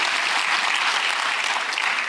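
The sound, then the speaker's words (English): An audience claps their hands for the Lord in a dense, steady burst of applause, many overlapping claps blending into a continuous bright crackle at an even, fairly loud level throughout. “Come on, somebody give the Lord a hand clap, a shout, and an amen.”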